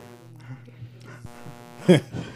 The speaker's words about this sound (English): We also have a hum that I've been trying to take care of during the entire game. Hum has joined us. But I will hopefully get this fixed